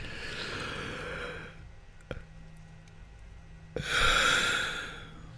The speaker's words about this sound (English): Definitely getting your yawning in right now with that. Just the talk of yawning.